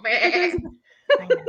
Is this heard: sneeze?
no